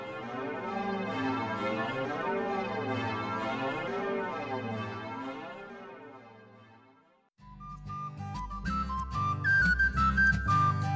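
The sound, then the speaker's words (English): Old church bells lying on the ocean bed chime as currents flow around them, with a warbling, watery wobble, their overlapping tones swelling and fading as if heard underwater. After a brief dip, brighter sustained tones take over. No one speaks. “As for the old bells, they settled down on the bed of the ocean, and to this day, as the currents flow around them, there are times when you can still hear their watery chimes.”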